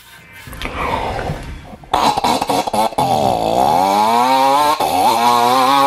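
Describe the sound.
A man loudly imitates a two-stroke chainsaw engine with his voice, sputtering to start, then revving in rising and falling buzzy drones that hold steady for several seconds, sounding like a motorcycle, alone.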